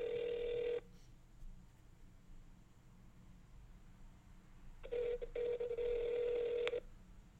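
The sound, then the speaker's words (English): Two long electronic ringback tones sound over a phone line as a friend is called, one at the start and another after a quiet pause, each steady and fairly loud, with no one picking up. “Our friends don't like picking up the phone.”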